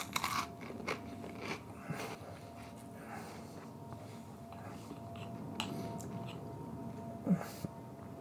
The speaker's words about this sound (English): Can't you hear me chewing on it? Yeah. On the toast? It's salty and fishy.